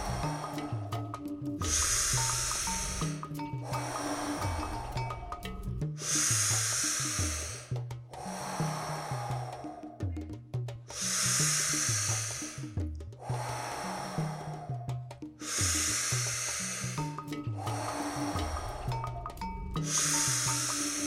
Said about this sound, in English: Dizziness, tingling in the hands, the fingers, tightness in the jaw are totally normal sensations that you might feel. Just stay with the breath. Doing great. Keep on breathing.